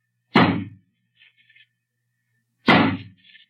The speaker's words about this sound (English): We'd better break the door down. Suppose we have old Johnny use his axe on it.